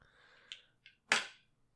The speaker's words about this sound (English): Sure, I'll roll some dice. Okay, so you are a heat level 1, so you're going to be rolling 1d6.